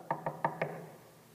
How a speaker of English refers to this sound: Mopping your head, you know, with your handkerchief or whatever, it's hot, you're sweating, you're wanting this repairman to fix the air conditioner, and all of a sudden you hear a knock at the door.